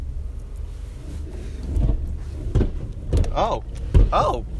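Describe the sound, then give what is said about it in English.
A car engine rumbles steadily while four or five sharp, loud pops burst out at irregular intervals, with brief vocal sounds mixed in near the end. “It was the car. It was like poof, poof. It was like revving its engine.”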